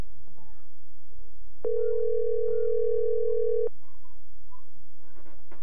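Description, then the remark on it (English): A steady telephone dial tone sounds for about two seconds as a phone call is placed, loud and clear, with a cat's meows and faint chirps scattered before and after. “We're just making a phone call here”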